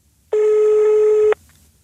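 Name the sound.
telephone ringing tone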